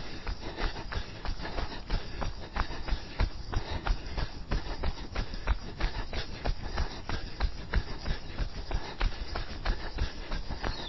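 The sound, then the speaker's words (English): Steady, muffled hoofbeats of a horse moving along a soft, muddy path, a continuous rhythmic clopping with wet squelching texture, with no one talking. “Another horse. Bit of mud.”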